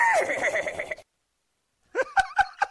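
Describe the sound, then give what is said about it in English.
A person imitates a horse whinny: a loud, warbling neigh that trails off, then after a pause, a quick series of four short, snorting whinny bursts. “but just for the sake of the conversation, here's my horse.”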